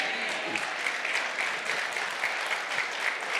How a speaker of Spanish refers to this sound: Now, ahora escúchame. It's good that you clapped. Es bueno que están aplaudiendo. Let's hope that you're clapping at the end. Pero yo espero que al final puedan aplaudir.